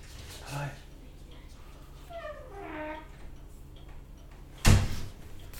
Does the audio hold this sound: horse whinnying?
no